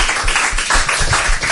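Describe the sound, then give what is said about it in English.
An audience claps steadily for four panel members, many hands at once creating a dense, loud wash of applause with a faint rhythmic pulse underneath. No one speaks. “Anyway, will you give our four panel members a nice big round of applause?”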